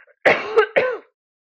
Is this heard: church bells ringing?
no